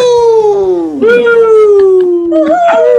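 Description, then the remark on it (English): Several voices howl like wolves in long, loud, wavering cries that overlap and slide downward in pitch, with fresh howls joining partway through, without ordinary talking. “I think we have a bunch of wolves in the background.”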